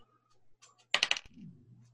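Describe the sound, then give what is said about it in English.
A six-sided die (d6), rolled during a tabletop role-playing game, rattles and clatters across a tabletop in a quick burst of four or five sharp, bright clicks lasting about a third of a second and lands on 3, with a low steady hum underneath. “Roll a d6”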